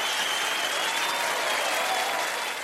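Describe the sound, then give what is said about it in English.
Fake applause sound effect: dense, steady applause fills the whole stretch, a broad wash of many hands clapping at an even level with no gaps, fading slightly at the very end; no voices are heard. “Okay, so the applause you're hearing is fake, y'all.”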